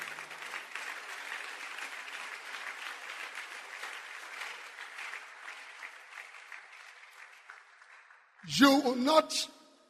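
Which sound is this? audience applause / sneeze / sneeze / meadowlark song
audience applause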